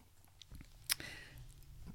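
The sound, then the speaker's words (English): A single gulp as someone swallows a big mouthful of milk: a sharp wet click with a brief rush after it, over faint low background noise and with no talking. “Wait, I was just taking a big gulp of milk.”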